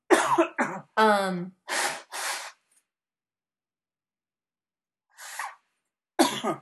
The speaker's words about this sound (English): I'm sorry, I really got to blow my nose.